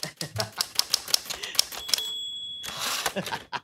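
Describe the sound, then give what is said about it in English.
Crisp typewriter keystrokes clatter in a quick, uneven rhythm as someone writes a paper, then a bright bell rings and the carriage rattles back across in a longer sliding sweep. “here's an audio of Connie writing a paper.”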